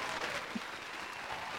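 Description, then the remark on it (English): Steady clapping from a group, a dense, even patter of many hands filling the whole moment without pause, moderately loud, with no voices standing out, as a round of applause for a guest joining the show. “That's enough applause.”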